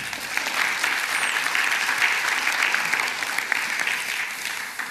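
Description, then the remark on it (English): An audience claps steadily for the full five seconds, a dense, even wash of many hands with no pauses and no voices rising above it. “We can clap for that.”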